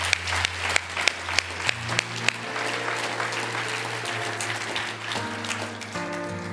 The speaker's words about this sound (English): And I think we ought to clap our hands and thank God for the abundance.